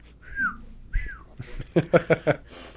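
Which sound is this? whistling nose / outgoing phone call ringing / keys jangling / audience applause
whistling nose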